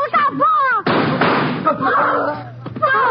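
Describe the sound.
A single sharp gunshot, fired at a man during a car hold-up, cracks out between shouting voices, its loud burst trailing off in a noisy rumble before the agitated speech resumes.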